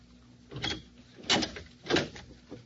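An unlatched door is opened with a few scraping, rattling bursts spaced about half a second apart, moderately loud, followed by a faint final knock. No one speaks.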